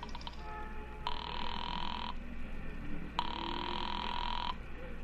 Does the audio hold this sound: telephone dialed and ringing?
yes